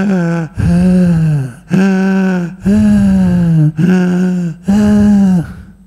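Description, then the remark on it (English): A voice imitates a man breathing loudly at a meditation retreat in Sydney: about six long, rasping, voiced breaths in a steady rhythm, forceful, with brief gaps between them and no other talk. “As soon as we started the meditation retreat, he was breathing really loudly.”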